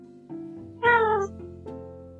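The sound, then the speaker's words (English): A cat meows once, loud, with a clear rising-then-falling tone lasting about half a second, set against a steady low hum. No one speaks. The cat is Alexander, a big black 4-year-old foster cat with yellow eyes. “He's 4 years old, and he's my first foster cat.”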